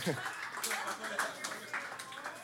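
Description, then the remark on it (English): Scattered audience clapping, a handful of sharp, uneven claps spread across a couple of seconds, mixed with crowd murmur and a voice talking underneath. “I love being clapped for being late.”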